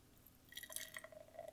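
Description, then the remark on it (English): German Pale Ale (GPA) beer, 5% alcohol by volume, from Bohemian Brewery in Midvale, Utah, pours into a glass, a soft splashing fizz with faint ringing glassy tones that starts after a brief quiet moment and continues steadily to the end, fairly gentle. “Allow me one moment while I pop my top. Oh, his top! Nice. And Le Pour.”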